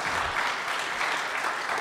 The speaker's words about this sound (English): And I was like, hey, listen, let's clap it up for Honey. Honey Larimore.